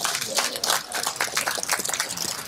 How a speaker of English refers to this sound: It's like a smattering of applause. We can do better. I think we can probably do better than that.